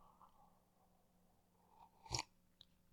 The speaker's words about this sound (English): Coffee sip. And I am going to take a coffee sip.